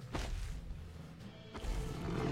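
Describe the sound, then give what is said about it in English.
A tiger in a forest lets out a deep, rumbling roar that swells and breaks into a second powerful burst, loud, with no voices over it. “Where did this tiger come from?”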